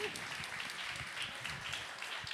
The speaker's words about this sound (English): Come on, give God a big round of applause.